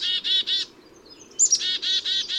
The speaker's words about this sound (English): Even birds who visit backyard feeders, like these black-capped chickadees, need a healthy mix of seeds, berries, and insects, often found on the native plants that we villainize as weeds when they grow in our lawns,